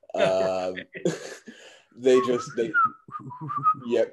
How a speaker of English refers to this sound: And then we can't get out of the scene without mentioning the track that they have on it. I can't ever pass up a good whistle track.